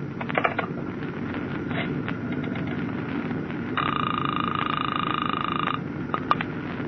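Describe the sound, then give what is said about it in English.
A telephone aboard a ship being dialed to the ship's radio communications office: scattered clicks, then a steady high electronic tone holds for about two seconds before cutting off, all over a constant low mechanical hum with no talking. “Well, just as a test, pick up the phone and dial the radio communications office.”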